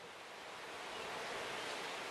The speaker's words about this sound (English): It's too windy to be outside.